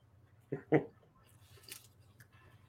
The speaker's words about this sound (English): Sorry, I'm chewing a hamburger.